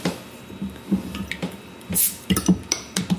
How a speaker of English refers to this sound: I'm going to open our first fruit cider now.